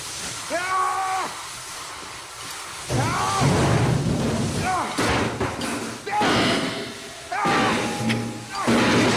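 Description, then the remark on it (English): In a film scene at a construction site where a water main breaks, a man strikes steel studs with a wrench in a series of about five or six loud, irregular metallic bangs, each a harsh crash followed by a brief ringing tone. “And he takes the wrench and just hits all the steel studs.”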